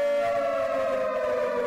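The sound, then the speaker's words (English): A civil defense siren wails steadily and loudly, its sustained tone sliding slightly downward in pitch as it sounds alone without any voices. “If Trump were president, sirens would be going off.”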